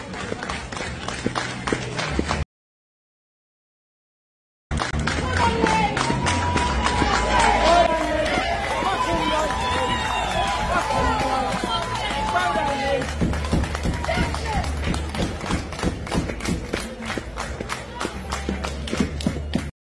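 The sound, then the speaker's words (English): A crowd cheering at a pool (cue sport) match: a loud, steady roar of voices and shouts with busy clattering and splashy bursts throughout, briefly cut off by a couple of seconds of silence early on. “Love that the crowd cheered.”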